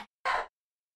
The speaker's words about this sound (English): Bless you. My wife just sneezed.